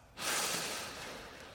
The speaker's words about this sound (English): Spirit says, …, just take a breath.